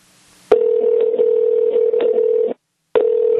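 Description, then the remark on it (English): A telephone ringback tone sounds through the earpiece during a call to a standard Kentucky phone number: a steady, fairly loud electronic hum lasting about two seconds, a short silence, then the next ring starting. No one speaks. “Keep ringing.”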